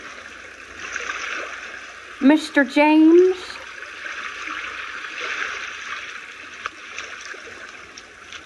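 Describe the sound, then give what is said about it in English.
Steady splashing and rushing water from boys playing in the water fill the background throughout, with a single voice calling out loudly over it partway through. “You like splashing, mommy? Think that's funny?”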